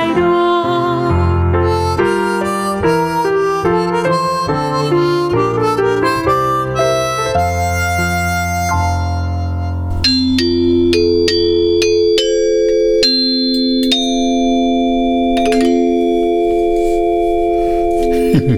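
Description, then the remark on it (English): Antique ship's chimes, about 100 years old, ring out several times, their bright metallic tones sustaining and overlapping as they fade, following a stretch of steady melodic music with no talking. “Those are some ship's chimes. From about 100 years ago.”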